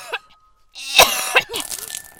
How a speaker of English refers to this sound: Coughing up blood.